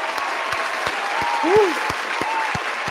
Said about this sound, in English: Where the real round of applause at, man? That's just somewhere around here. There we go.